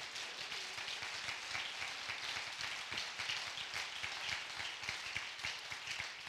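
An audience claps their hands in a dense, steady wave of applause that holds for several seconds, the many overlapping claps blending into a continuous crackling roar with no clear individual voices.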